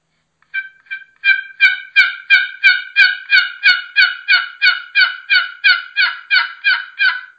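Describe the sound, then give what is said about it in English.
A turkey box call runs a long, steady series of raspy hen yelps, about seventeen evenly spaced notes, fairly loud with no talking, played to see if anything answers. “Just kind of soft with the box call, see if anything answers.”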